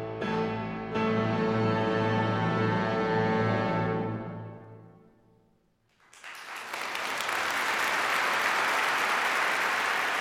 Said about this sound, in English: She soaked up the applause, the star of the show, and she played like never before.